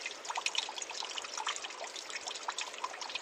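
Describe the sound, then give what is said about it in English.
Water trickles and burbles steadily in a small creek pool of cool water by big boulders on a warm fall day, with a continuous bubbly splashing texture and no voices, moderately quiet. “Small trickling pool with cool water.”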